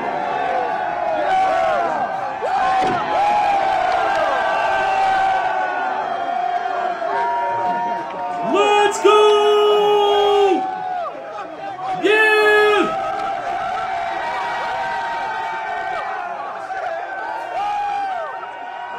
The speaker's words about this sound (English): I'm in that crowd. They were going crazy. I am in that crowd.